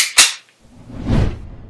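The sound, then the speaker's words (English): One sharp, loud gunshot effect cracks out near the start, followed after a short pause by a softer, rumbling swell of noise. No one speaks. “He aims for you now, Vista.”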